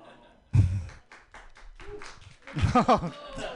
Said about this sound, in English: Thank you. Thanks for the clap.